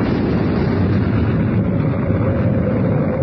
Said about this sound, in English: An explosion inside the Sphinx. What happened, Reed? Even I can figure that out. It was the Pharaoh's last booby trap. He blew up every trace of his very existence.